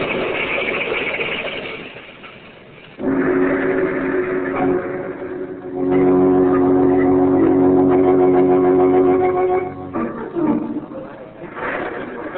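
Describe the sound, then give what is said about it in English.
On a stormy night, a car speeds along a highway through a small village, its engine roaring up loud with a sustained, screeching whine, then breaking off abruptly into a rough burst of noise as the car crashes. “Been an accident, officer.”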